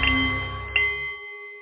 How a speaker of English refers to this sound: The Nepalese meditation bowl is chiming, centering your mind and delight on The Art of the CEO